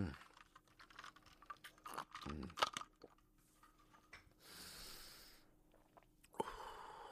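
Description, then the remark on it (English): Sipping an iced homemade lemonade mixed with lots of mint and sugar: ice cubes clink and rattle in the glass, then a steady slurping draw lasts about a second, followed by a few more clinks. “Let me take another sip.”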